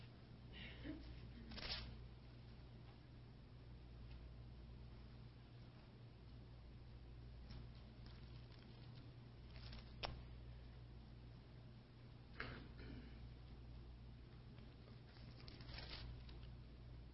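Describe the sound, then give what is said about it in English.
Pages of a Bible being turned, with soft papery rustles and flicks arriving every few seconds over a steady low background hum, fairly quiet, with no one speaking. “I'm still turning. I'm almost there.”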